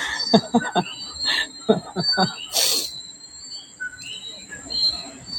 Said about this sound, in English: It's birds.